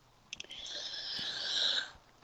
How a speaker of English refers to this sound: Sorry, also a weed cough.